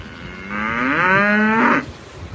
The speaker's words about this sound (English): Random cow.